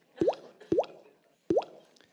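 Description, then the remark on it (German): Three distinct raindrops plop one after another, each a short bright drop with a rising, hollow pitch. The first two come quickly, a brief pause, then the third. No voices. “Aber der Honi ist völlig enttäuscht über diesen Regentröpfchen.”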